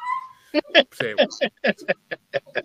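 A dog gives a short, high whimpering whine, then breaks into a quick run of about ten sharp, yappy barks in a steady rhythm, fairly loud.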